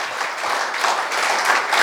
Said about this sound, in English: Can somebody give a round of applause for Jesus? Do it as if you mean it from your heart. Clap your hands for our Lord Jesus.